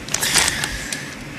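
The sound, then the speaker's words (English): Sharp, dry crunching of a roasted corn kernel snack, a quick run of bright, crackly bites with a few louder snaps, heard alone without any talking. “The real roasted corn kernels. Ultimate crunch.”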